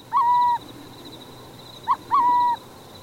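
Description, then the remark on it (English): A burrowing owl calls twice, each a steady, mellow hoot lasting about half a second, the second preceded by a brief clipped note. Clear, with no voices. In Oregon, at a decommissioned military nerve gas storage site dotted with concrete bunkers. “But the site has taken on a new life as a luxury subdivision for burrowing owls.”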